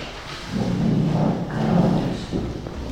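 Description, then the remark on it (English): Chairs being moved and cleared away for people at a Sunday morning Kensington Unitarians gathering: a run of low scraping and knocking thuds, fairly loud and uneven, with no voices over them. “Just clearing some chairs there for people.”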